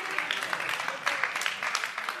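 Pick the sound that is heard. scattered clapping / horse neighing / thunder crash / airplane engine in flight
scattered clapping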